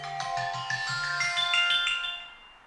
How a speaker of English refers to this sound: What the hell? Well, that was your timer.